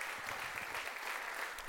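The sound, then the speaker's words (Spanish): A church audience claps together for God in sustained, dense applause, a steady wash of many hands with no pauses, fairly loud throughout. “Dele un aplauso a Él.”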